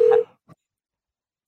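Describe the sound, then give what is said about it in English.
A brief, steady electronic ringing tone from a cell phone call, loud, cuts off after a moment, followed by a faint short click and then silence. No one speaks. “This is the real Jeff Goldblum cell phone”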